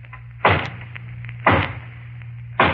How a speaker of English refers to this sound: And then there's the hollow knock on the front door. I'll demonstrate that, too.